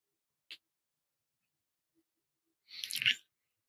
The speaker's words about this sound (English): I just need to take another sip.